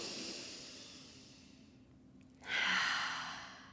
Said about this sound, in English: Should we take, like, a group breath? Yeah, we did. Yeah. Listeners, if you're in your car, at home, whatever you're doing, let's.